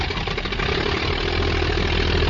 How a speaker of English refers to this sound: And if you're interested in the aircraft, it looks like the airplanes that they have here are Travelairs, which was a biplane of the 20s. Travelairs.